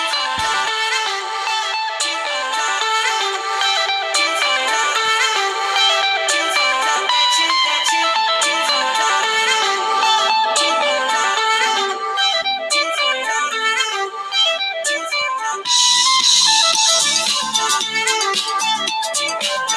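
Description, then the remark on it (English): A song plays tinnily through a small phone speaker, thin and lacking bass, with bright melodic music running steadily for about twenty seconds at a fairly loud, even level. “I'm going to try and play a little bit of it now through my phone.”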